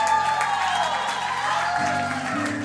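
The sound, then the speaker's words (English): An audience claps steadily for a few seconds, a dense wash of many hands at an even, fairly loud level, with a low hum running underneath. “You haven't got time to clap.”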